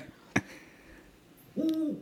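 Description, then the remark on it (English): A great horned owl gives a deep, low hoot that swells in near the end, preceded by a brief sharp click; no one speaks. “Oh, great horned owl.”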